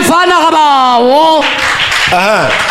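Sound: audience clapping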